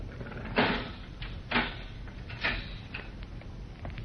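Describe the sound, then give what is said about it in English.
A guard unlocks a heavy steel cell door: three evenly spaced, loud clanks followed by a couple of lighter clicks, with no voices. “The guard unlocks the heavy steel door.”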